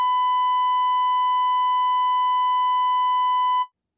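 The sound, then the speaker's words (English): A single steady, loud censorship bleep tone holds at one pitch for about three and a half seconds, then cuts off abruptly. No voices are heard. “oops, that should have been beeped.”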